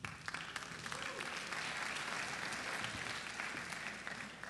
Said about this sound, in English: That is probably the least enthusiastic applause so far today, so thanks. It's a good woo. Who did the woo? That was a good woo.